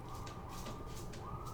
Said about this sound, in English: Freaking sirens, jeez.